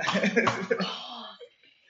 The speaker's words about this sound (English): Coughing.